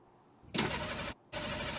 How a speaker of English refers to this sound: It's a car.